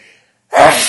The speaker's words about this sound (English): And I sneeze. Bless you. Thank you.